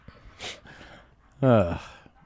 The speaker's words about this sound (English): He's breathing real heavy in that position.